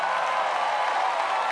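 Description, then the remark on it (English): An audience claps together in a steady, dense burst of applause, loud and continuous throughout with no single claps standing out and no voices heard. “Clap your hands if you want to see the same thing in your heart.”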